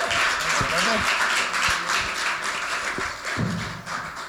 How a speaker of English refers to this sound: So we're super excited he could be here. Let's give him a round of applause one more time as he shares with us.